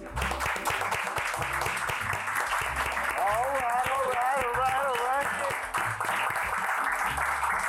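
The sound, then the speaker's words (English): A crowd at a Whisky Society gathering claps together in a steady, rhythmic slow clap that carries on throughout, with voices talking and calling out over it. “No one told you about the slow clap?”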